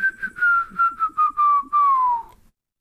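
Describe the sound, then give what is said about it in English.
Someone whistles the catchy hook of a pop song, a string of short clipped notes drifting gently downward and ending on a longer held note that slides lower before stopping. “Did this come out after that one song with the whistle hook?”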